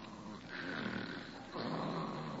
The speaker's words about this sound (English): Holy smoke, she snores. Oh, no, no, she never told me about this. With a whistle yet.